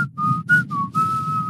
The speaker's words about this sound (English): Jeez. Whistling abilities on point.